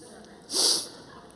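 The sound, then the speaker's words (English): A single stifled sneeze: one short, muffled, hissing burst of air, about a third of a second long, rising and fading quickly against a faint steady background. “Sorry, I'm working on a sneeze here.”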